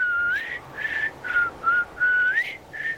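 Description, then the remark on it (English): A person whistles a long, sustained call to attract lizards, in a series of connected tonal phrases, rising and falling slightly in pitch, fairly loud with no talking. “a whistle, you say? Could you demonstrate what the whistle sounds like?”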